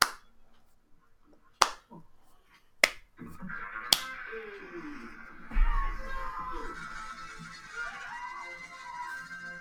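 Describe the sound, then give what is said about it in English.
Four sharp, loud claps spaced slowly about a second apart, a deliberate slow clap, followed by a busier wash of background sound and voices. “Good enough for a slow clap.”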